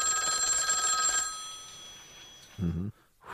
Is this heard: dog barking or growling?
no